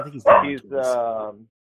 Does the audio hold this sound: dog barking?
yes